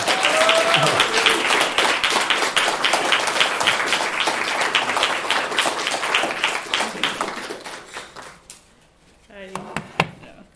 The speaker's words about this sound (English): please welcome her and her winning poem with a loud round of applause.